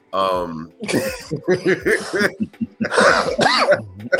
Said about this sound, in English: yes, cough it, goddammit, cough.